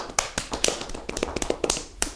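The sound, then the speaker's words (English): A dog clapping: a quick, uneven run of about a dozen sharp claps, crisp and percussive with small gaps between them, at moderate volume and with no voices. “That dog's so good at clapping.”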